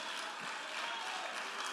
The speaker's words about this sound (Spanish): Y el que lo crea, denle un fuerte aplauso al Señor con el corazón.